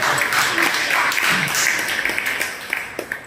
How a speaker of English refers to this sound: It's a good round of applause for that person.